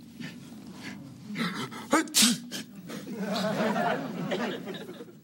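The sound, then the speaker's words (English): A man, the character Al, lets out one sharp, loud sneeze with a quick intake before it, set against murmuring voices and a swell of audience laughter that follows. “Al sneezes.”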